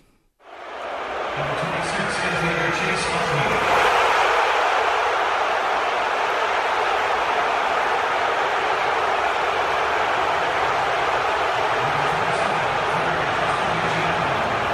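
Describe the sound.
A large crowd of New York Mets fans at Citi Field boos baseball player Chase Utley as he is introduced, a dense, unbroken roar of many voices that swells in within the first second and holds at full strength to the end.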